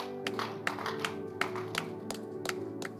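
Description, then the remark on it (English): A group claps in a steady rhythm, sharp hand claps landing every fraction of a second over a sustained musical drone, moderately loud, with no one speaking; the people are giving a clap for the Lord. “Give the Lord a mighty clap of him.”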